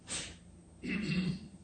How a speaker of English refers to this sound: Clearing my throat deliberately.